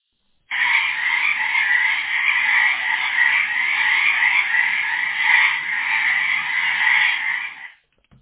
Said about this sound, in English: You'd have insects, animals, and varmints all making their noises. But the loudest of all were the frogs. They'd start croaking at sundown and go all night. And I mean all night. Back and forth.